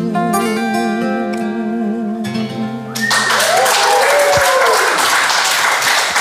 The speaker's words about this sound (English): Thank you. Wow, this place erupts in applause.